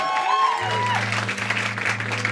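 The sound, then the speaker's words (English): An audience claps steadily as the keyboard player of a live band is introduced, over a held low bass note and soft keyboard chords, with a brief whoop or rising voice near the start, all at a lively level. “Round of applause.”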